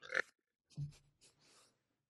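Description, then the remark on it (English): A puppy named Clover, lying on top of a person, snorts and snuffles through her nose in a few short bursts: a sharp breathy snort, then a low grunting exhale and softer sniffing, with no talking. “That I heard. Just her big fat nose.”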